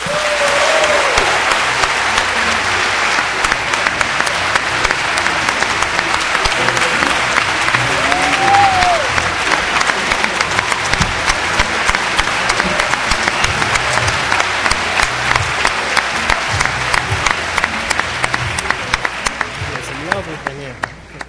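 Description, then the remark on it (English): A crowd applauds steadily for an artist for about twenty seconds, a dense, even wash of many hands clapping with a few faint cheers mixed in, fading slightly at the end. “Please give a round of applause for who I believe to be a prophet amongst men, ….”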